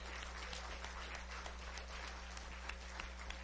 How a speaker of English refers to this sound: Come on, let's give him one more hand clap of praise this morning.